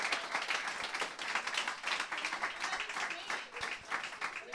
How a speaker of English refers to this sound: Folks, give Helen Keller a big round of applause, guys.